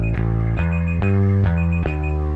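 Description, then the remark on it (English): A timer alarm goes off, a loud, steady electronic chime with rich harmonic tones that restrike in a regular pulse about twice a second, with no voices over it. “Thank you, Timer. Beautiful timing, Timer.”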